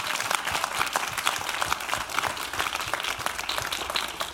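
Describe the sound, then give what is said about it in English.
A crowd applauds for the Lord, many hands clapping in a dense, sustained wash of sharp claps that holds at an even level for several seconds. “I wish you would clap better for the Lord.”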